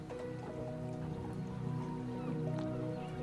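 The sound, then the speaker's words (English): Soft, gentle splashes and drips of water below a boat lap continuously at low volume, blended with a steady, sustained tonal hum in the background. “You feel pleasantly warm and safe as you listen to seagulls above you and the soft splashes of water below.”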